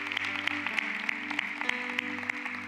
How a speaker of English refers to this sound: Let's give the Lord a round of applause this morning. Amen. Amen.